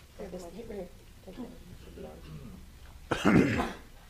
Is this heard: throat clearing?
yes